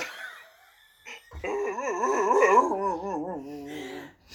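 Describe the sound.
A person lets out a long, wavering, dog-like howl, fairly loud, rising and dipping in pitch for about three seconds after a few brief soft noises.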